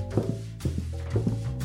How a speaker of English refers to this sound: There are footsteps on the stairs.